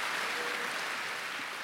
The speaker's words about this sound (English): Oh, if you're clapping, can you clap in a more convincing way than what you're doing?